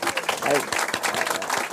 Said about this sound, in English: So collectively, on behalf of all of us, I want to thank you very much. Notwithstanding that Buddhist bow, I think we could applaud.